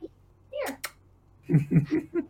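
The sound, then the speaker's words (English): A person makes a couple of quick kissing smacks to call a cat, followed by a short burst of soft voiced calling sounds. “I love how I'm making kissy noises like she'll hear me.”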